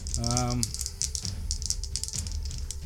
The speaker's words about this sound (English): Okay. Can you get a rattle into the dice? Woo! 22. I rolled a 10 and a 19.